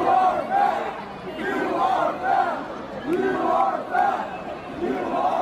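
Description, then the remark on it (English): A large basketball arena crowd of Hawks fans chants in unison while Luka Doncic is at the free-throw line, repeating a short rhythmic phrase roughly once a second, loud and sustained over a constant roar of voices. “Listen to what the Hawks fans did the other night with Luka Doncic at the line.”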